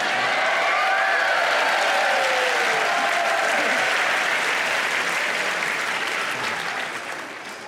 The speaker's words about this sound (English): Thank you. It really wasn't that long an applause. No, never mind.